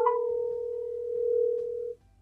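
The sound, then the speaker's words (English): A single steady electronic phone ringing tone from an outgoing phone call holds for about two seconds at moderate volume, then cuts off abruptly, leaving a faint low hum. “I'm calling Asterios on my phone right now.”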